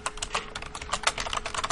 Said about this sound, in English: I've typed fast, but talking and typing is probably not going to happen.